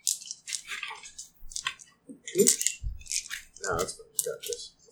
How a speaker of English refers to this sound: Dice everywhere.